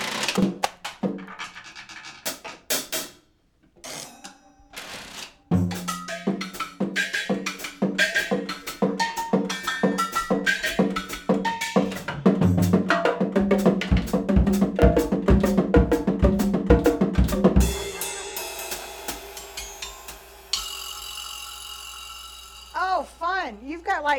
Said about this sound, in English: I mess with these too, the drums and stuff. It's nice. It's fun. I've got some crazy stuff on here, like. Oh, you do have crazy. That's a kitchen rack. I don't know what it is. You've got pots and pan lids